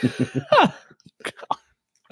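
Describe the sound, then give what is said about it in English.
Someone clears their throat: a quick run of low, rasping pulses rising into a strained vocal grunt, followed by a few short, scattered throaty bursts. “forgive me, I've run out of drink and my clear my throat a lot.”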